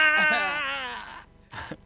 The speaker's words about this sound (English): It was her death scream. It was.